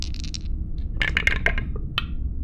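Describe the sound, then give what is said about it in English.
A brief rattle of dice being shaken, then a burst of hard plastic clatters as they tumble down through a dice tower during a tabletop game roll, ending with a final clack, fairly loud. “I like how I'm shaking the dice before I put it on the dice tower, like as if that makes a difference.”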